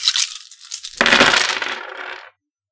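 A handful of ten dice is rolled for the character Spook's shooting attack in a game; the dice rattle briefly, then spill out in a clattering burst that tumbles and settles over about a second. The sound is fairly loud, with no voices.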